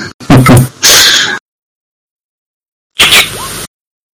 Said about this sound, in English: Shutter goes off.